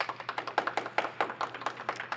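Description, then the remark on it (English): A small audience claps steadily for about two seconds to vote for "FBI agent" to enter the internet history books. The sharp, overlapping hand slaps form a quick, uneven patter at a fairly soft level, with no talking over it. “If we think FBI agent should make its way into the internet history books, please clap.”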